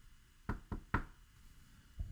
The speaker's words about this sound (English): He's like, yeah, he's in his office. Door's closed, so I knock on the door.